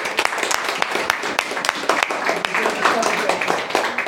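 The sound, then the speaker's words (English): A crowd applauds an actor's performance with dense, steady clapping, many sharp hand claps overlapping into a continuous bright patter for several seconds at a fairly loud, even level. “You can give him a clap.”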